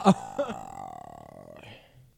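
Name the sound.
burp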